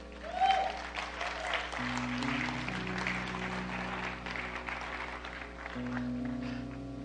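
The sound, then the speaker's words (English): Steady audience applause, a dense crackling wash of clapping that holds for several seconds, with sustained low organ-like chords humming underneath and no talking. “I may need to go back and check my notes and make sure, but I really think at that point in time it was supposed to say everybody should be applauding that the battle is not ours.”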